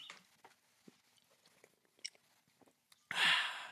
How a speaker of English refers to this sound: let's take a sip from that toast